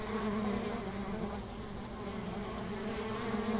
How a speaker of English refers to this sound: Height of the season, you'll have about 60,000 bees in one hive. People are always amazed by that. When I ask them how many, they look aghast, but that will go down to about 20,000 in the winter. And that's just one hive.